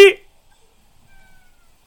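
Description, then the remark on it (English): A cat gives one short, loud meow right at the start, followed by near silence with only a faint, thin tonal trace later on. “Shut up, Kitty!”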